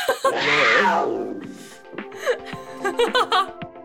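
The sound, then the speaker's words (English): A voice imitates a roar: one loud, drawn-out, throaty cry lasting about a second, then trailing into softer, broken vocal sounds like chuckling. “Maybe I'll put in a roar noise.”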